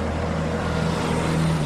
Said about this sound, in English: Pedal to the metal, this agrarian duo drives off through the New York traffic, hoping to inspire future urban farmers.